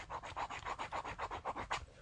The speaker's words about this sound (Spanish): Y ahora estoy mirando al libro que tengo, es un libro de cuero negro, donde veo que nos queda 806 días. En este momento voy a usar un boli de tinta azul para cruzar el día.